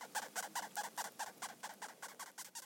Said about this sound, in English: push it inside this decomposing mouse to record the stridulations, the squeaks of sexton beetles, and the response of the adults encouraging them to feed.